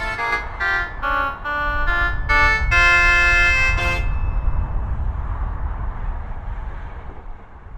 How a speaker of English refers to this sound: Now, for those of you with sharp hearing, you may have heard the traffic cut in underneath that. That's because what I decided to do to make it easier is just record half an hour of 309 traffic. And just mix that in after.